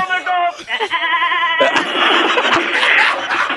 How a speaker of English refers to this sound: There goes the goat.